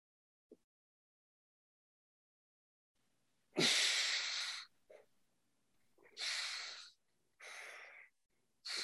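Airy breaths through the nose: one long forceful breath followed by a few shorter in-and-out breaths in a steady, unhurried rhythm, with no talking.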